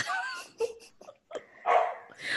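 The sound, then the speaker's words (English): A male dog lets out a string of short, high yips and barks in uneven bursts, some whiny and drawn out, with brief pauses between them. “Oh, there he was. Sorry. First, your dog's name?”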